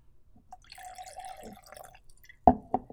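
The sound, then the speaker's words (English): A drink is poured into a glass in a short, steady gurgling stream lasting over a second, followed by two sharp clinks or drips. No one speaks. “Did you just pour me? I tried, but I couldn't.”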